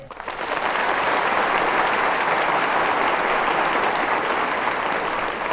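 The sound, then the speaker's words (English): A crowd applauds steadily, a dense wash of clapping that rises quickly at the start and holds at an even, loud level throughout, with no voices standing out. “And a nice view to carry your own applause along the Champs-Élysées.”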